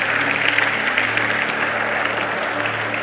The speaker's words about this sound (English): Come on, let's give the Lord a round of applause for this. God is good.